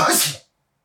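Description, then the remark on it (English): A single sharp sneeze bursts out, a brief explosive rush of breathy noise that cuts off abruptly into silence. “Bless you.”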